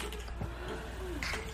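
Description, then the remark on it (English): Apple juice spills in soft, brief splashes and drips onto a bed, with a muffled wet patter over a steady background hum. “You're spilling the juice on the bed, princess.”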